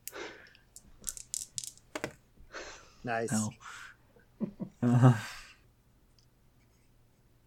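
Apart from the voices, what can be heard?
many dice being rolled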